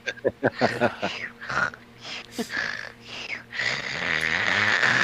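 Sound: voice imitating loud snoring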